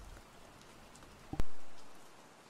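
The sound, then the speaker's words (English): Soft, steady rain hisses evenly throughout, with one sharp tap partway through that rings out and fades. No voices are present. “Now that you're feeling nice and relaxed, go ahead and listen to the gentle rain for a moment.”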